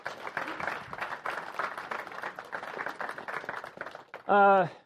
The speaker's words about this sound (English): if you would come up to a round of applause.